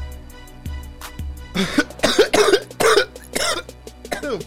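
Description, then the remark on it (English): A loud coughing fit after smoking cannabis: a rapid string of harsh, raspy coughs bursting one after another for a few seconds, with a low background hum just before it begins. “Cough to get off is right.”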